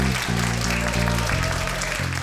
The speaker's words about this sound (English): When it ends, everyone claps.